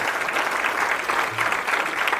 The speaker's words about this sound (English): Matter of fact, clap your hands for the Lord. Will you do that?